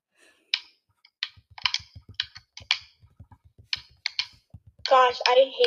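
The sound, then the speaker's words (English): Quick, irregular plastic button clicks from an Xbox game controller being used to type, crisp, tapping away steadily for several seconds before a louder, rougher burst of sound cuts in at the end. “Gosh, I hate typing on Xbox.”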